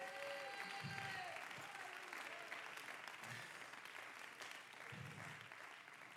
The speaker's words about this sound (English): I wish somebody clap your hands to the Lord.